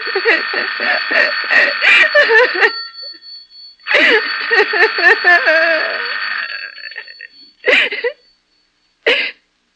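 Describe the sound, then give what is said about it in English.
A telephone bell rings in long, rattling bursts with pauses between them, a steady high tone running through each ring, while vocal sounds blend in underneath. “Let it go on ringing. It's a trick of some kind. And I won't answer it.”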